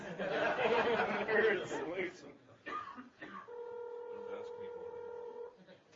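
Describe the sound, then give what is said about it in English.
Background chatter gives way to a steady, buzzy ringback tone from a phone on speakerphone, held for about two seconds at moderate volume. “It's ringing.”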